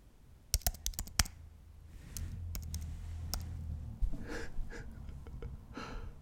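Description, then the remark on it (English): Quick clicks of keys tapped on a computer keyboard, fake typing done for listeners as ASMR: a burst of several strokes followed by scattered taps, fairly soft, with breathy rustling underneath and no speech. “That's right, we now have a keyboard right in front of me, so I'll be able to fake type into your ear holes, because I know how you enjoy that.”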